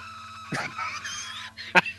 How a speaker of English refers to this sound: That scream. One of the greatest screams in cinema history. Just fundamentally bothered.